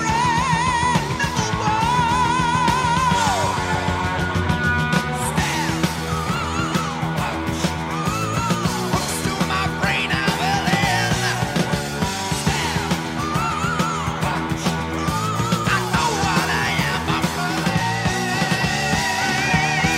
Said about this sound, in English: overlooked, also awesome scream right there at the end of the second chorus.